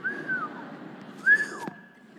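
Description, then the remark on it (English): A person whistles two short, airy phrases, each sliding up and then dipping down in pitch, with a brief gap between them. The whistling is fairly quiet and a little wobbly. “I whistled. I don't whistle well, but that was a whistle.”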